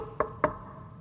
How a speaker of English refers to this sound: He says, I'm right there at the door. In fact, I'm not standing there inactive. I am knocking on your door.